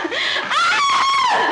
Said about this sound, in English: Scream! Go on, scream! That's it!